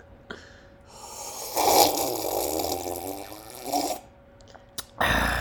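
A long, loud, gurgling slurp of thick eggnog stretches for about three seconds, rough and wet in texture, followed by a couple of sharp clicks and a short noisy burst. No one speaks.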